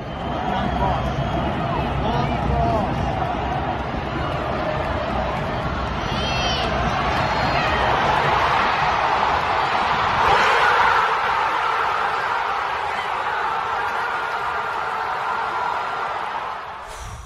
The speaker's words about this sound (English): This was Felipe Mora's goal. Just pure crowd noise.